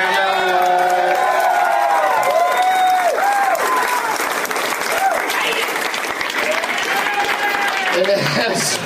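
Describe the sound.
A live show audience applauds a performer steadily for about nine seconds, dense clapping mixed with loud cheers, whoops and shouting voices rising and falling throughout.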